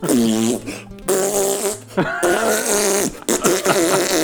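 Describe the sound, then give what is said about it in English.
An excited man walking by blows a string of loud, wet raspberry noises with his mouth, imitating farts in several sputtering bursts over a few seconds, with no other talking. “And he's walking by, and he's so excited, and he's just making all these fart sounds.”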